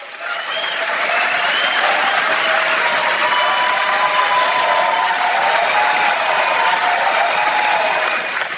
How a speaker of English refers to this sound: I feel like there should be that like sound machine, you know, yes. The crowd going wild.